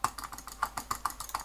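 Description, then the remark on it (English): Rapid, uneven computer keyboard clicking, about a dozen crisp taps in quick succession, moderately quiet, with no voices over it. “I can click if you'd like. Yeah, do some clicking.”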